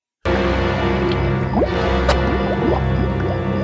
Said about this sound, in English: The remaining members of Able Squad, the Exo Squad here, lands at a pig farm. And De Leon, his pod lands upside down. And you get a little poopy noises.